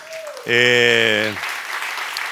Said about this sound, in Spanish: Estamos al aire a través de la radio en este momento, y démosle el aplauso a los que nos van a escuchar a través de la radio, a través de las redes sociales.